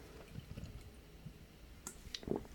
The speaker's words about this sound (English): So, all right, time for a little sip here.